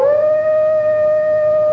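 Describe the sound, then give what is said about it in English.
A single sustained howl sound effect, steady and loud, rising briefly at the start and then holding one long, clear pitch, heard alone with no voices. “Keep the Howls.”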